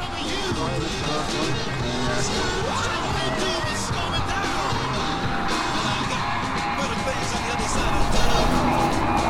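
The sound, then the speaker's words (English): Steady road traffic rumbles throughout, with a vehicle swelling louder as it passes near the end, while indistinct voices murmur underneath the continuous roar. “And time for traffic noise.”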